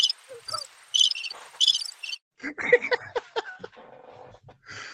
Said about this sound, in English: Put the cricket sounds, Slick. You can play the cricket sounds all you want to.